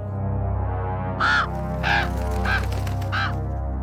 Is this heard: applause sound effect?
no